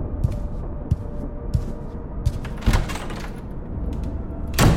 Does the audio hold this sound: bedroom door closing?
yes